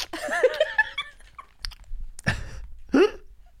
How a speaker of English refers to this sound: I'm swallowing kind of like, it's like a gulp. It's like air kind of.